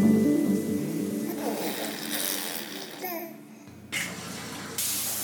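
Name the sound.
shower water running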